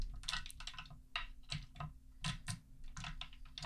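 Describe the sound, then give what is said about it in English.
A handful of dice clatters and clicks as it is scooped up and jostled, a quick irregular run of small hard taps, fairly quiet, with no voices. “Oh, grabbing all the dice. All the all dice. All the dice.”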